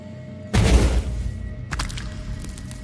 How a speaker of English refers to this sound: The first thing you notice is the sound of a thundering explosion with a huge wet thud.